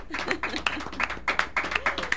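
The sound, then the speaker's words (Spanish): Scattered applause from a small group of people in a studio booth, a few seconds of quick overlapping hand claps at moderate volume with voices murmuring underneath. “Bueno, podemos darle un aplauso a todas las personas que estamos aquí en la cabina.”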